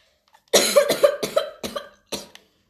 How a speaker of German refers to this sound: Nicht wundern, ich habe Husten.